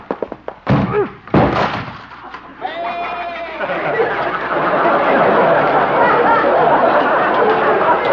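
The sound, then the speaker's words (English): A goat makes a couple of heavy thuds against a door, then a splintering crash as it breaks the door, followed by a rising swell of crowd chatter and laughter that continues to the end. “Well, at least Doc will have to get a new door. Maybe he'll have to get a new goat.”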